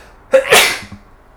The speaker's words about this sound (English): Oh, I gotta sneeze.